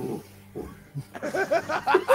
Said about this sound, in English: That's Lemon's dog. It's gotta be. No, my dog never makes noise. He's a pit bull without a bark.